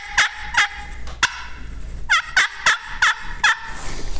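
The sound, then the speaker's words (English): A slate turkey call scratches out a raspy, slightly flat jake yelp: three notes, a short pause, then four more in a steady run, loud with no talking. “On a slate or glass, the deeper tone comes from the middle of the call.”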